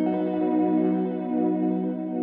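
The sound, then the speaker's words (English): A sustained electric guitar chord rings through a delay pedal's vintage-style echo with its mechanical wear setting turned up, its tone wavering slightly, holding steady and fairly loud throughout with no voices. “That is mechanical wear.”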